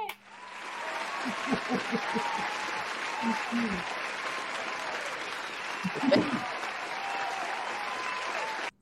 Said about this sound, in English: So I do want to congratulate you. I'm going to give you the round of applause.